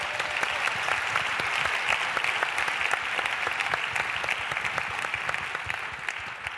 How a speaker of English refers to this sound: So give a round of applause to the speakers.